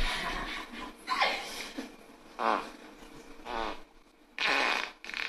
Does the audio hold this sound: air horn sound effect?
no